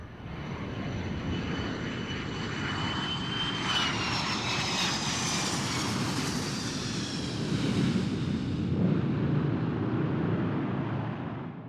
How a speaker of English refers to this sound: A passenger jet lands at the airport in Tel Aviv, Israel.